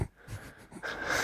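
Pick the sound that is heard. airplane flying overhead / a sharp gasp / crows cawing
a sharp gasp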